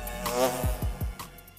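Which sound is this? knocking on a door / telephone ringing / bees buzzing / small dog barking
bees buzzing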